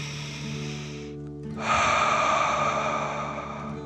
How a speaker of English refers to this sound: Breathe in through your nose, filling up your belly, and then out through your mouth, pretending you are breathing fire. Ready? Okay, deep dragon breath in and out.